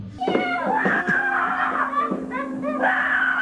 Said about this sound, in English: It's just screaming. I think they're excited. They're not even opening it. Yeah, they're trying to open the box. Oh, my word. They are losing their minds.